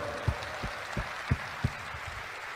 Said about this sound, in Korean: 당을 혁신하고 대선 승리를 이끌 민주당의 선장 송영길 대표님이 계십니다. 박수 한번 주십시오, 여러분.